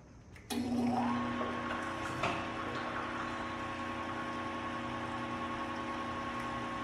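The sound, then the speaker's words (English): A small electric brewing pump restarts with a sharp start, then runs with a steady mechanical hum and whine, with a faint rushing flow of liquid as wort is pumped from the mash tun, bypassing the plate chiller, into the boil kettle. “So I'll restart the pump.”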